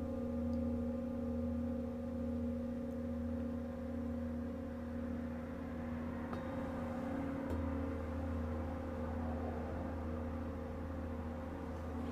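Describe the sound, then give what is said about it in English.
Two sound bowls, one resting on a person's shin and the other on their chest, are struck back and forth, ringing together in a steady, overlapping hum of low, sustained tones, with faint strikes now and then renewing the resonance. No one speaks. “So she's moved one of the sound bowls down right on top of the shin, and the other one is still on the chest, kind of hitting them back and forth.”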